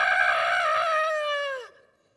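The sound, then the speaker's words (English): A voice imitates the long, loud scared yell of someone riding a zipline, a sustained "Ah!" held for over a second before sliding down in pitch and cutting off abruptly, heard alone. “He yelled like this, "Ah!"”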